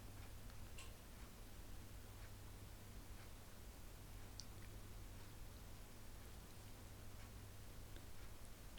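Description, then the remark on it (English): A clock ticks faintly amid near silence, its soft clicks barely rising above a steady background hiss and low hum, with no one speaking, recorded in stereo to demonstrate a very low-noise microphone. “So you can hear our clock there and things like that.”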